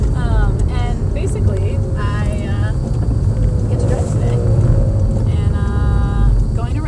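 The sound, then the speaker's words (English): A manual-transmission car being driven, its steady low engine and road rumble filling the background throughout while a person talks over it from inside the vehicle. “You might hear my I'm driving today actually in my manual yep. transmission.”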